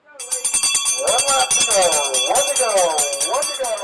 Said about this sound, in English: At the sound of the bell, the riders, mouths open, legs a blur, surged. In the infield, a boy dropped his bike to watch, his red helmet swiveling through the final lap.